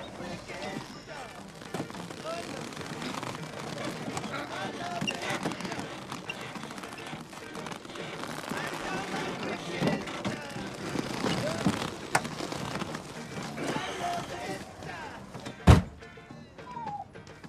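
A heavy man weighing nearly 400 pounds climbs out of a small car: sustained shuffling, creaking and rustling movement, ending in one loud, sharp thud like a car door slamming shut.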